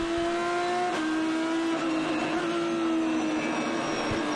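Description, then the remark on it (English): An Aston Martin V12 race car engine screams loudly and continuously, a high, steady harmonic wail that dips slightly early on, then holds its pitch, with no voices present. The car is on a shakedown outlap, its paddle-shift gearbox changing up and down. “Paddle shift on that car, of course, and the trademark scream, the skirl of the Aston Martin V12.”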